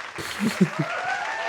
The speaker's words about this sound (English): I got to do it manually because I turned off the things. But okay, I'll put it on claps too.